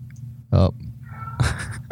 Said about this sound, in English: Oh. Cat in the back.